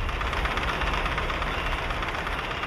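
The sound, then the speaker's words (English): Heavy mine conveyor machinery starting up after a pre-start warning runs with a steady, loud, low rumbling drone and a dense rattling texture, holding an even level throughout with no voices. “The conveyor start at the pre-start warning sounds.”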